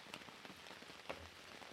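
Steady rain patters down on a hard surface, a soft continuous hiss with scattered individual drops tapping through it. It sounds fairly quiet, with nobody speaking.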